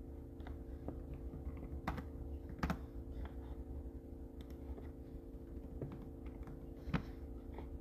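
Irregular clicks of typing on a computer keyboard as someone types up a YouTube live stream and its tags, a few sharper key strikes standing out over a constant low electrical hum. No one speaks.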